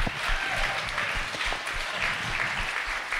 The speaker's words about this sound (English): Come on, let's give him a big round of applause.